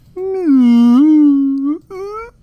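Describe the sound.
A voice mimics a whale call with one long, wavering, moaning tone that dips and rises, followed after a brief break by a shorter, slightly higher moan.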